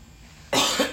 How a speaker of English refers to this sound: Now I have a cough. I actually don't feel good at all.